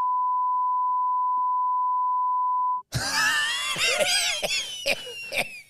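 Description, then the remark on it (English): A steady, high-pitched censor beep holds one flat tone for nearly three seconds, then cuts off abruptly as loud, shrill overlapping voices burst in. “There's a name of someone from Bathurst who I want to say, but I'm not because we know him, but beep it out.”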